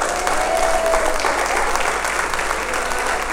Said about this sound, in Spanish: Vamos, ¿alguien puede darle un aplauso a Jesucristo?